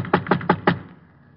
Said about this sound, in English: 10 minutes later, I was rolling up in front of an old brownstone where Nat Fox, the not-so-ex-jewel thief, was now living. I went up and knocked on his door.